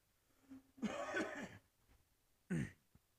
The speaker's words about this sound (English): Sorry, I'm still coughing up a little bit. Sorry if I'm trying not to do it in the mic